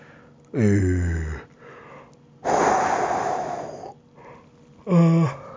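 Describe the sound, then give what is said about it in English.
A big, drawn-out yawn: a low descending groan, then a long breathy rush of air, ending with a short voiced sigh. No talking. “Jeez, big yawn.”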